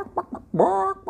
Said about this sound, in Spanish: Y Ronald McNugget no es una persona, no, Ronald no es una persona, Ronald es un gallo.